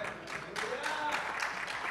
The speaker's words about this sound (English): Give him a big hand clap.